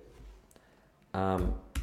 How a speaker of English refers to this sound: You can hear me typing. That is how real this damn thing is.